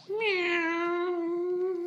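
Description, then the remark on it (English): A single long, drawn-out cat meow, loud, holding a steady pitch for nearly two seconds with nothing else around it. The cat is Memekata. “And then, as it happened in the past with Mark Merlin, mystic detective, the mind of Ra-Man is transferred into the body of Memekata, the cat.”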